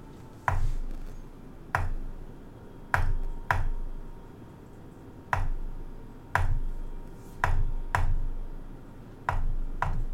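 A raven's beak chips at a simple stone door, chips of stone coming off: about ten sharp, dry knocks in loose pairs with uneven pauses, ringing bright over a low, steady rumble, with no voices.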